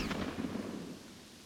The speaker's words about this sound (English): Their voices rose and a tense standoff ensued, but before the situation could escalate, a gunshot echoed through the alley.